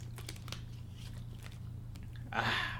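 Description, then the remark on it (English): A sip of water from a cup: small wet mouth clicks, then a short slurping draw near the end, all over a steady low background hum with no talking. “Before I get in it, I'm going to take a little Malice in the Chalice, sip of water, get the vocal cords all situated here.”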